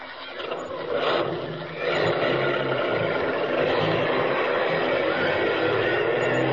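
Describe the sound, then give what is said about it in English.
The engine of the last bus rumbles loudly and steadily, a broad noisy drone with a low throbbing undertone as the vehicle pulls off, no voices heard. “You get on that bus, too. It's the last one. Go on.”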